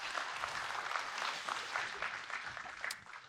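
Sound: audience applause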